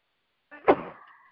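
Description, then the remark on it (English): A single sneeze: a brief catch of breath, then a sharp explosive burst that trails off into a short voiced tail, with silence around it and no talking. “Bless you.”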